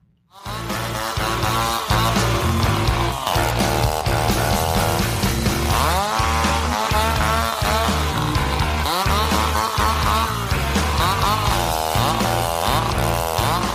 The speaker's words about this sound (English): I put the moment where they have a guy in the band who plays the chainsaw.